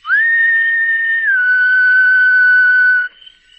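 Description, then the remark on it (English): A young man standing on a suburban lawn beneath a second-story window whistles softly: a single long, steady tone that steps down to a slightly lower held note after about a second, clear with no other sounds around it. “Looking up, he whistled softly.”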